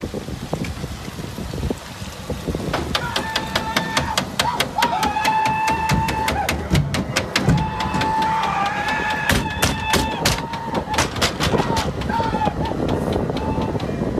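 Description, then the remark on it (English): Muffled thumping and high, wailing screams come from people with bound hands inside a detention van as it drives past and away, in the morning near a blockade east of Belleville, heard over steady vehicle rumble and wind noise. The bangs repeat irregularly while the cries rise and fall. “That is the thumping and screaming of people from inside that van as it drives away.”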